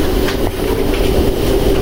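A pressure cooker hisses steadily as it heats, a continuous breathy noise over a low rumble and a faint sustained hum, with no voices.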